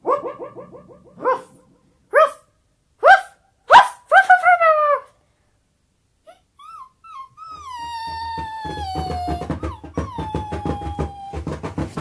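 A dog barks sharply about five times, the last few in a quick cluster, then after a pause lets out a long, wavering whine that lasts several seconds.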